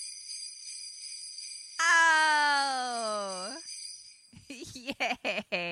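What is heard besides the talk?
sleigh bells jingling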